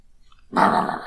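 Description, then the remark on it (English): After a brief quiet moment, a large female dog jumping up to greet her owner lets out one loud, excited vocalization, a sustained half-second whining bark, with no one speaking. “She's a big dog, but she's very baby.”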